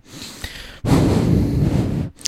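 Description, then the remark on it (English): Heavy, close breathing right up against the microphone: a softer breath, then a long loud rushing exhale lasting over a second, with no talking. “Do you like the breathing into the mic?”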